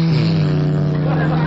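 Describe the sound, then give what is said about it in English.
A voice imitates a flying buzz bomb engine with a steady, loud, droning buzz that holds one low pitch for about a second and a half, unbroken. “2 minutes later, the first bus bomb came right over our hotel.”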